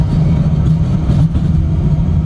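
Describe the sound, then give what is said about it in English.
A regular tram heading into the city of Melbourne runs with a loud, steady low rumble and a droning hum beneath it, continuous for the whole stretch with no voices. “Oh, look, it's a regular tram.”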